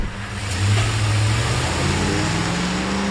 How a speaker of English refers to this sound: And then, you know, a truck pulled up, get in, and I was like, oh, right on, these are my guys. The truck deposited the young case officer inside the guarded gates of his new home.